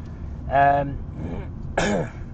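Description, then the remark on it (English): Someone with a cold clears their throat twice, a short gravelly rasp followed a second later by a rougher, noisier second clear, with quiet room tone between. “I've had a bit of a cold, so could be some coughing and some spluttering today.”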